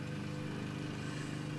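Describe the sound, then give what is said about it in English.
A lawn mower engine drones steadily and fairly quietly, a low humming motor with a constant pitch and no pauses. No one speaks. “I bet my neighbor is mowing.”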